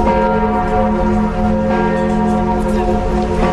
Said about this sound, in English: The bells of Notre Dame tolled over Paris as they've tolled over the centuries in times of disaster and of national grief.